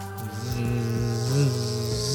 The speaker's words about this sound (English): As you see, it looks like these swarms of wasps that start following you guys, that start rushing and follow, chasing you guys. I'm like, oh shit! They're having the big wasps!